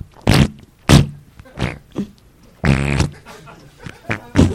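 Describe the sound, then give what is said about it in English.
A voice imitates a rapid series of farts heard during meditation at a meditation retreat, about eight short buzzy, sputtering bursts with one longer drawn-out raspberry in the middle, loud with brief pauses between. “It's like an orchestra of farts going on while I'm trying to meditate.”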